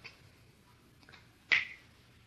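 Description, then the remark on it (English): A single sharp finger snap, made to illustrate a brief sensation, cuts through an otherwise quiet stretch, a crisp bright click with a brief ringing tail. Fainter rustles come just before it, and no one speaks. “Just snap your fingers.”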